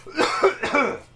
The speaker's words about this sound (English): I just started kind of clearing my throat while I was telling the joke, so I was just trying to finish it.